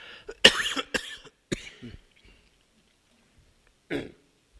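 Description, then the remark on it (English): A short fit of harsh coughs, three or four in quick succession, then a pause before one final cough, fairly quiet, with no talking. “Let's cut the sound just for a sec so I can cough and not make too much annoyance.”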